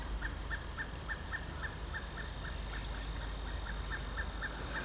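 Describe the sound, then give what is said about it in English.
A pileated woodpecker gives a long, evenly spaced series of about fifteen quick, ringing calls over a steady hiss of outdoor background noise, in an oak woodland on the grounds of a Trappist abbey. “Wow, just saw a pileated woodpecker. Wonder if you can hear that.”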